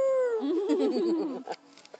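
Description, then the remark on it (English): A voice imitates a tiny elephant's trumpet: one high squeaky note slides downward into a wobbling, warbly tail lasting over a second, followed by a couple of soft breathy clicks. “Small elephants would be really cute, though. They would be cute. And make that cute little sound.”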